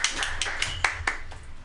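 A short burst of applause for a radio show guest: steady, fairly rapid clapping with sharp, bright hand claps repeating about five times a second over a soft background hum, with no voices.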